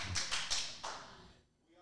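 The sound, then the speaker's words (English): A couple of sharp, crisp hand claps in quick succession, followed by a brief quiet stretch with faint background murmur. “Ooh, if you hear me clap twice.”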